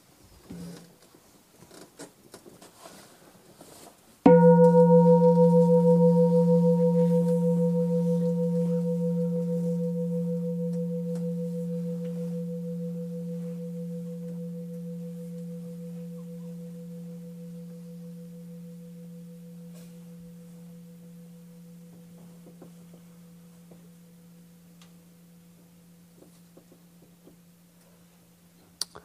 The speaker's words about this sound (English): This is such a lovely bell. Let's begin by listening to the bell.